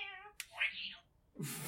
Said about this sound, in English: Okay, so barely you hear a meow of a cat complaining, and that no one would have picked up on that sound.